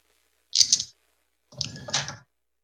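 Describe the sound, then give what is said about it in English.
A set of new dice rattle and clatter across a hard surface in two short bursts, fairly loud, rolled for a Scorching Ray spell in a game, with a brief pause between the rolls and no one talking. “Let's try these different dice here.”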